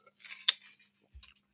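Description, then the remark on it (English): A short slurping sip of a drink, followed by a soft gulp and a light knock as the cup is set down. No one speaks. “Let me take a sip.”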